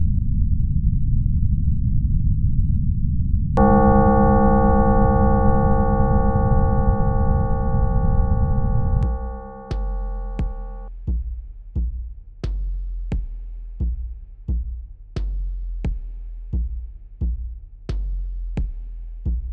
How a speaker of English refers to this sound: What you are about to hear is the hollow thumping of your pulse inside your skull.